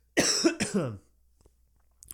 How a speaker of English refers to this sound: Pardon me, I'm going to cough here.